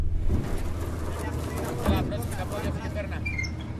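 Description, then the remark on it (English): A boat's heavy metal gangway thuds down onto a dock at one of the Mount Athos monasteries over a steady boat engine rumble and wind noise, with a couple of dull clanks and faint background voices. “As the boat's heavy metal gangway touches down at one of Mount Athos's 20 monasteries, there's a rush of monks, pilgrims, and cargo.”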